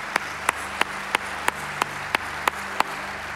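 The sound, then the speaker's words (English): Applause at a Christmas church service, welcoming a woman invited to close the service with prayer: a steady run of about nine sharp, evenly spaced claps over roughly three seconds, with a low, constant hum underneath and no voices. “Would you give her a big round of applause?”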